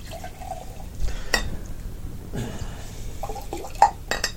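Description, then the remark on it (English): Grog glugs and splashes as it is poured into a skull glass, with a few brief clinks and trickles over about four seconds, moderately loud with no talking. “Grog. Skull glass. Grog.”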